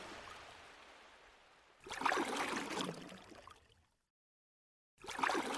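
Water sloshes and splashes close by as small boats are pushed off and float away, with a soft steady wash, a louder burst of splashing, a brief silence, then more splashing.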